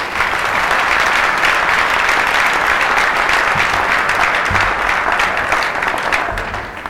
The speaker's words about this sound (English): Would you all please give him a warm round of applause?